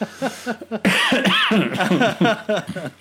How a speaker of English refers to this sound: As I'm coughing here.